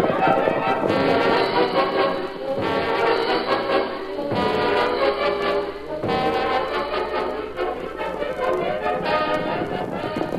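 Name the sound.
horses galloping off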